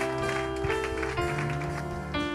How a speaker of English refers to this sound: Let somebody shout me believing, amen. Give a clap unto the Lord.